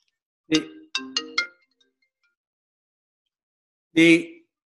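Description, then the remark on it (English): A phone ringtone for an incoming call plays a quick melodic phrase of short tonal notes, pauses in silence, then sounds again with a longer bright chime burst, clear with no talking. “Phone. Somebody's calling you.”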